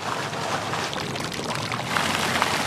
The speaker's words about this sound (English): Bubbling out of the fountains, steaming up the sidewalks, and on tap at 103 degrees in the center of town.